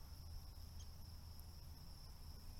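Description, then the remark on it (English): Steady, high-pitched cricket chirping in a forest fills the background in a continuous outdoor drone, soft, with a low rumble underneath and no voices. “There are crickets chirping.”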